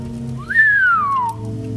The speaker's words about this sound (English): let out a dramatic whistle, but beneath her exaggerated act, there was real terror, and I enjoyed every drop of it.